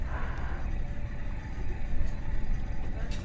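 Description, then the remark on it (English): A steady, heavy low rumble of a ship's engine and hull pushing through an ice field, with a few sharp crunching cracks breaking through around the middle and at the end. “Yeah, you can hear there as we hit the ice. Crunch.”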